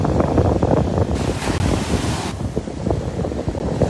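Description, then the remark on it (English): Small waves lap and wash against the northern shore of the Sea of Galilee (Lake Kinneret) in Israel while steady wind buffets the microphone, with one fuller surge of water in the middle; no voices are heard. “We're standing now on the northern side of the Galilee Sea, Yam Kinneret.”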